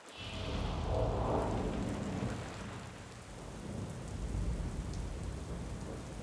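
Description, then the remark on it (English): Steady rain pours down continuously, drops splattering against windows in a dense hiss, with a low rumble of thunder rolling underneath throughout. No voices. “I like watching the drops splatter against my windows.”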